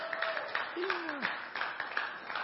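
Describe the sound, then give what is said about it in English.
A church audience claps steadily throughout for those joining online, a dense wash of many hands with faint cheers and a short whoop rising over the applause. “Can we thank God for those that are joining us online? Come on, can we clap?”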